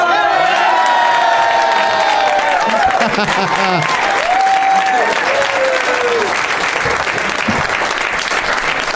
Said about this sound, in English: Did you do that to get your own round of applause?